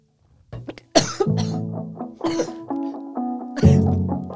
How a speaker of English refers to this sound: She's coughing.